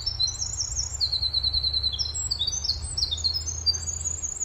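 A winter wren sings in the morning at Sizerville State Park in northern Pennsylvania, a long, rapid cascade of high, tumbling trills and twitters, bright, over a steady low rumble of outdoor background noise.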